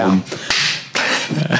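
Two sharp, fleshy smacks of a hand slapping a person across the face, the second following about half a second after the first, with brief vocal sounds around them.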